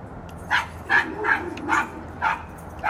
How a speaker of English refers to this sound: Another dog get on my nerves all day, walking back and forth, and he bark at everything. Why she walk him so much? Literally, they was just out here an hour ago.